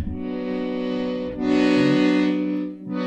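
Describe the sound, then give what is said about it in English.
An accordion holds a slow minor chord in long, steady tones, swelling louder midway and briefly restarting near the end, with no voices over it. “And so I threw some like long like accordion kinda tones in it.”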